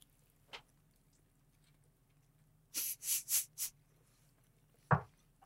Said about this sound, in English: Now make sure, get real loud chewing. And don't forget to breathe through your nose as you're doing. Oh, I forgot. Nothing endears people to a podcast more than the sound of eating.